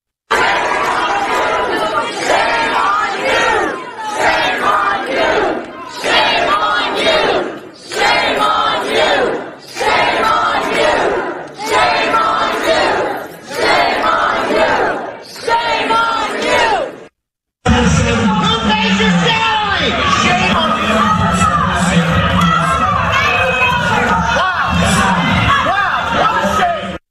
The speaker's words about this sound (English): Now, let's go to the Loudoun County and listen to parents very emotionally yelling at school board members.